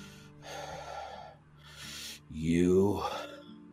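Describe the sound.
Heavy, ragged breathing: a couple of loud, airy inhales and exhales, followed by a strained, voiced gasp that trails off, over a low steady hum.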